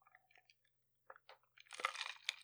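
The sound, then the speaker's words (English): Wet mouth sounds of someone sipping water: a few small slurps and clicks, then a louder, fuller gulp toward the end, with no talking. “After we land on this little sip of water.”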